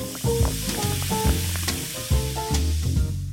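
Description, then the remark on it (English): A steady fizzing hiss of a distilled non-alcoholic spirit and soda poured over ice, crackling continuously for a few seconds over low tonal background sounds, with no one speaking. “Coming up, a certain brand of distilled non-alcoholic spirit and soda over ice.”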